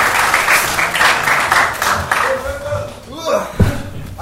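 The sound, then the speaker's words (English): A burst of steady clapping and cheering from the audience at a show as a wrestler guest is called into the ring, with whooping voices rising over the applause before it thins out near the end. “I thought you'd be the clapping cheer.”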